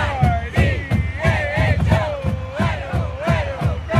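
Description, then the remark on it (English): The University of Idaho marching band blares a brassy fight song over a steady, loud drum beat that thumps about twice a second, with crowd noise underneath. This is at the Vandals' last home football game of the season against UC Davis, in the Kibbe Dome in Moscow, Idaho, on a November day. “The marching band plays the fight song.”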